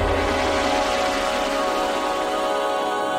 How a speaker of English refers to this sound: So you've got this whooshing, sort of sweeping sound, and that relates directly back to the helium velocity and density.